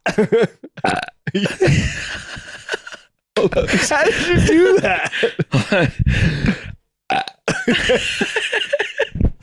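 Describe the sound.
A few short, dry burps from a young child, fairly loud, broken up by brief pauses, with someone speaking in between.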